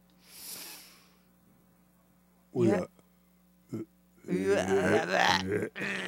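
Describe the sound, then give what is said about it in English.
A soft breathy hiss, then a short, loud, buzzing fart noise made with the mouth, a brief second sputter, and then a person starts talking. “No farting sounds, unless it's a real fart, in which case it's natural and it's a healing sound.”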